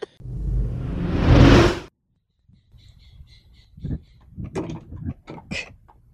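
A door swings open with a loud, rising rush of air lasting a couple of seconds, then cuts to quiet outdoor ambience with faint bird chirps and soft, muffled movement or voices.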